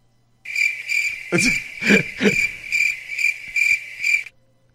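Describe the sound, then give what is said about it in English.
A cricket sound effect chirps in a rapid pulsing trill for about four seconds, clear, with a couple of brief low thumps or rustles mixed in before it stops abruptly. “Awkward cricket.”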